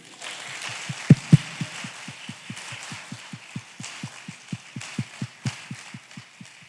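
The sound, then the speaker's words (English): An audience claps for themselves on a count of three, a dense wash of applause running throughout, with a steady series of dull low thumps, about four per second, from the speaker clapping with a microphone in hand, pulsing beneath it. No one speaks. “So on the count of three, clap for yourselves.”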